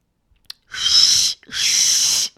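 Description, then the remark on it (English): A person tries to whistle: two long, breathy blows of hissing air, each under a second, with almost no clear tone coming through, preceded by a small click. “Fucking, that was me trying to do one of those whistles.”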